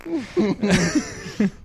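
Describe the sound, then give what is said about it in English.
Buzzy, wavering fart-like noises, apparently made by a voice, come in several short bursts, with a louder blurt in the middle and a final short squeak. “That does sound like a forehead fart.”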